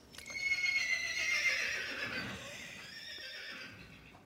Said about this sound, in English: Come on, it's a horse neighing.